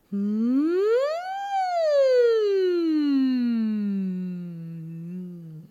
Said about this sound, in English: Okay. Let's slide up and down with a hum.